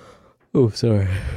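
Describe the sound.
A single drawn-out, voiced yawn, opening with a sharp intake and settling into a long, sighing exhale that trails off.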